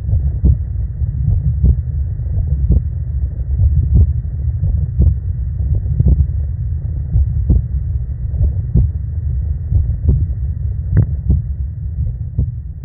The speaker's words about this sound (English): So just to send us off, here's my unfortunate heartbeat.